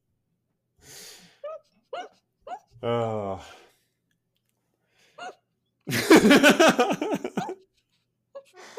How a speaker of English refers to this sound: I have the laughing hiccups again. It's okay. It's going to take a bit. It's going to be okay.